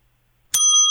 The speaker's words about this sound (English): That's the segment bell, everybody. Ooh. For sports.